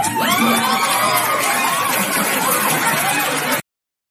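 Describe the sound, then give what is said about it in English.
The studio audience of The Tonight Show with Jimmy Fallon breaks into loud, sustained applause and cheering after a joke about the 2020 census results, with high whoops rising above the dense clapping. It holds steady for about three and a half seconds, then cuts off abruptly. “So he says that they did the census, and the number of white people has gone down, and then all of this applause comes from the audience, and this is just so typical.”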